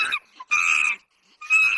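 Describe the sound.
A child's voice imitates a monkey with three shrill, squealing calls in quick succession, the middle one longest, loud with short silent gaps between them.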